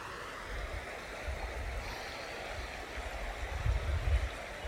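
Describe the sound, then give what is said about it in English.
Running river water with a steady rushing wash, broken by a few low, heavier sloshes as the wake of a passing boat knocks against rocks, the strongest coming near the end. No voices. “A boat just went past. Do you hear it? Knocking against the rocks.”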